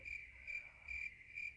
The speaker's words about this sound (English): Some crickets.